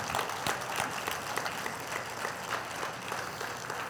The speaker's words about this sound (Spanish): Le podemos dar un fuerte aplauso al Señor.